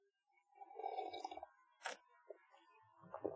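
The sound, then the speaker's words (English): Someone takes a quiet sip of coffee, with one brief slurp in the middle surrounded by soft mouth and handling noises. No one speaks. “I gotta take a sip of this coffee, sorry.”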